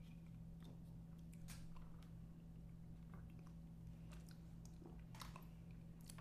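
Someone sips cough syrup: small wet slurps, lip smacks and swallowing clicks scattered over a few seconds, with a steady low hum underneath and no talking.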